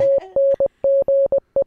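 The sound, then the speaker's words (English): Morse code beeps spelling out a name: a steady mid-pitched tone in a quick pattern of long dashes and short dots with brief gaps, loud and clear with no voices. “this is your name in Morse.”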